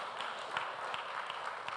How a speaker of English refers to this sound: Let's give a clap offering to the teachers. To the teachers of Friday class, whether they are here or wherever they may be.